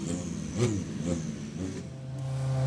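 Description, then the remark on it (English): Drift cars rev their engines while doing a demonstration run up a hill, pitch rising and falling in repeated bursts before settling into a steady engine drone, with no one talking. “You can hear in the background drift cars doing their demo up the hill.”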